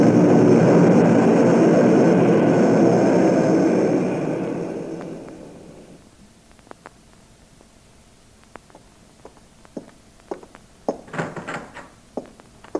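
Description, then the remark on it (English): A loud, broad roar of an airplane passing overhead fills the opening seconds, then fades steadily away, leaving near-quiet broken by a few scattered clicks and soft thumps. “Hey, listen. The plane.”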